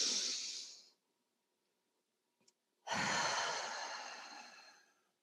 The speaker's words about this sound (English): I really like the breathing in for, I think it's like five to seven counts, holding for three, and then breathing out for seven. So in for five, hold it for three, breathe out for seven. In, you know, and just take in those deep breaths.